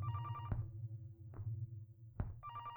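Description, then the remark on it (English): The built-in answering machine of an old beige landline phone in a bedroom whirs and hums with a steady electronic tone, broken by three sharp mechanical clicks. It is fairly quiet, with no voices. “As you move into the hall, you see an open door that leads into a bedroom with an old beige landline phone and a built-in answering machine.”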